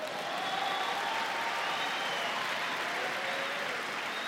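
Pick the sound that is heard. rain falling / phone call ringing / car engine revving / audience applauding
audience applauding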